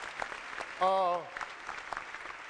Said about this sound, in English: Let's give a hand clap. Praise God.